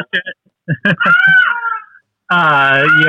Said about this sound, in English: Do you hear the cat? I do. She has made her appearance. It would not be a show without you that your cat didn't appear in.